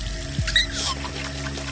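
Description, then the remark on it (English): Water runs from a tap in a short, steady splashing gush, turned on to wash a baby, moderately loud, with a faint background hum and no talking. “Turn on the water! Turn on the water!”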